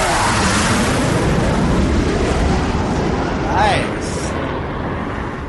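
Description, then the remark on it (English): A jet engine roars steadily and loudly throughout, a dense rushing wash of noise with a brief rising whine swelling near the middle before the roar settles slightly lower. “Got a new jet.”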